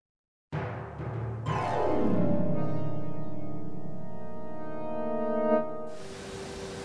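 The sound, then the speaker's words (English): A loud, steady ship alarm blares with a rich, buzzing tone for about five seconds, signalling that the ship cannot maintain its altitude; a second layer joins with a sliding downward pitch, then the alarm cuts off into a soft hiss. “Hear that alarm? That means we are unable to maintain our altitude.”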